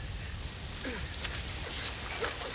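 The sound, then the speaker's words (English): Steady rain hisses throughout, with scattered drops tapping and a low, continuous rumble underneath. The downpour stays at an even, moderate level with no voices. “This whole Dilophosaurus attack is done without music. It's just the sound of the rain.”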